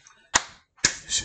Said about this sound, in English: There you go. Two claps.